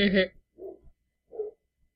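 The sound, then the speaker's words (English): An old female dog with canine dementia barks three times: one sharp, loud bark followed by two softer, more muffled ones spaced about a second apart, with silence in between. “No, it won't stop anytime soon because the main barker has doggy Alzheimer's.”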